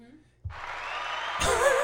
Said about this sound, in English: for pressing that applause button.